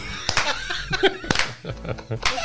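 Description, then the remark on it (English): People in Studio 113 at Wake Electric clap along to music, sharp crisp hand claps landing in an uneven rhythm, mixed with chattering voices and a bit of laughter throughout. “We are clapping along to the music and glad you have joined us.”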